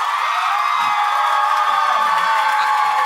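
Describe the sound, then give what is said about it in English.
A live audience erupts in sustained applause and cheering as an applause-meter vote, a dense, loud wall of clapping and whoops that holds steady for about three seconds without letting up. “Everybody that applauded gets to go.”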